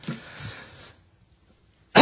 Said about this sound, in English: coughs